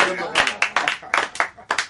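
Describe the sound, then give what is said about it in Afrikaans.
An audience claps for a maestro as he comes to the piano, a quick, uneven burst of sharp, bright smacks, about eight distinct beats over two seconds, fairly loud and with no other sound on top. “Ach, kom jy, ek dink ek hoort nog 'n lekker hande klap.”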